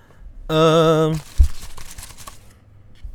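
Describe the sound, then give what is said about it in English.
A drawn-out vocal exclamation, then a short thump and about a second of scratchy paper crinkling and rustling that fades away. “Ooh, the paper. The paper.”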